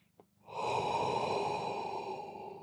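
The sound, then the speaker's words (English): A single long, deep breath drawn in during a guided meditation, loud and steady for over two seconds after a brief faint sniff at the start. No one speaks. “Now let's breathe again.”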